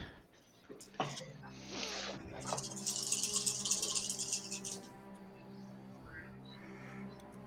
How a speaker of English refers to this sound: Whoa. Intimidating dice sounds. I know. Very intimidating dice sounds. That's some dice sounds.